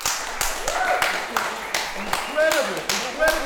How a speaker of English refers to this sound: But who they are, Lucy Ives, has come all the way from the United States to be here for this event. Can we give Lucy a round of applause, please?